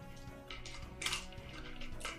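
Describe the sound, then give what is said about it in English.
A handful of dice clatter and tumble across a hard surface, a quick jumble of sharp clicks and rattles over about two seconds, fairly soft, with no voices. “Dude! So many dice!”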